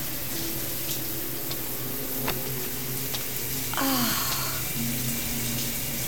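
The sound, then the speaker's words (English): A shower runs with a steady hiss of water pouring continuously, with a few faint knocks and tonal hums underneath. “Oh, but you do have a shower.”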